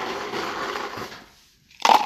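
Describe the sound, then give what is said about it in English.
Ice cubes rattle and crunch as they're scooped from an ice bucket, then after a brief pause a loud, bright clink as they drop into a glass for a cocktail. Clear, no talking. “Angel was reaching into the ice bucket to grab some ice”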